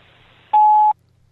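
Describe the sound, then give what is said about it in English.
A single steady electronic answering machine beep, clear and fairly loud, lasting under half a second before cutting off into near silence with faint line hiss around it. “Please leave your name and message after the beep.”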